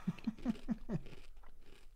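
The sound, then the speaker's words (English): Close-up crunching of a crisp snack being chewed, five quick rhythmic bites in the first second, then softer chewing fading out, loud and right against the microphone. “You can tell by the crunch texture.”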